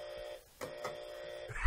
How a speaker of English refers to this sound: I might have to give you two buzzers for that one.